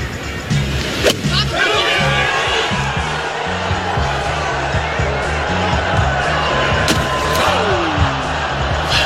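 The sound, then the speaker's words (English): A sharp, brief splash of sand from Tiger Woods' bunker shot with a big sand wedge on the 17th hole, with a second burst later, over a steady murmur of crowd noise and people talking underneath. “That was pretty good audio there. You could even hear the splash.”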